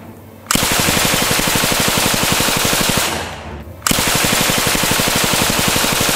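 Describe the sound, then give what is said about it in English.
A high-powered gun fires at a door in rapid, continuous bursts, loud and sharp, with a brief pause partway through before the relentless volley resumes. No voices are heard. “So my wife knew I must have a high-powered gun, so she got the kids down on the ground as I shot up that door.”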